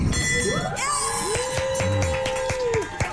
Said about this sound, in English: what you're hearing there is the ring of a bell and joy.